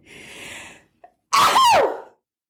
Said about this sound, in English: Lee hates it when I sneeze.